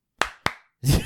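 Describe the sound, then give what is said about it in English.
Two sharp, crisp hand claps about a quarter second apart, followed by a louder, rougher burst of noise right at the end. “Since we don't do the claps anymore.”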